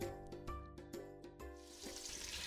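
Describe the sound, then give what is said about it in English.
Shrimp brown in hot oil for a shrimp stew, a steady crackling hiss that grows brighter and busier toward the end, punctuated early by a few sharp pops and taps, without any talking. “when they're cooking and they're browning, they're going to season up this juices, the oil and stuff.”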